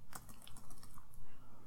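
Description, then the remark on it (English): A quick series of light plastic clicks from computer keyboard arrow keys being pressed, several taps in an irregular rhythm, fairly quiet against a low background hum, with no one speaking. “I'll just use the arrow keys.”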